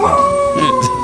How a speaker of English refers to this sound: I didn't realize dogs could sing, but.